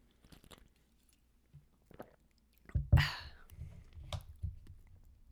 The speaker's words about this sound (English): Drink some water, clear my freaking system.